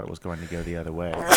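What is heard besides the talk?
sneeze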